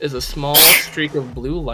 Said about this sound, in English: Bless you again.